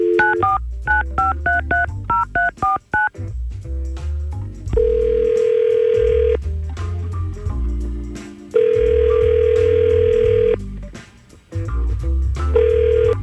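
A quick run of touch-tone dialing beeps as Y100 radio hosts phone a listener on air, then the line rings: long steady buzzing rings with pauses between them, clear, as if heard through the handset. No one speaks.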